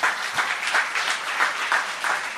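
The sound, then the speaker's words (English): A crowd breaks into steady applause, many hands clapping together in a dense, continuous patter that holds at an even, moderate loudness throughout, welcoming newcomers, including newly married couples, at a service. “Let's welcome them with a big round of applause.”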